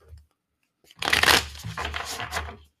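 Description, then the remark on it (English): A deck of cards being shuffled for a card reading, a quick riffle of crisp papery flutters and taps lasting under two seconds, with no one speaking. “A little shuffle ASMR for you.”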